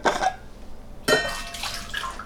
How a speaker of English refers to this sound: So I'm going to pour the rest of the water out of here.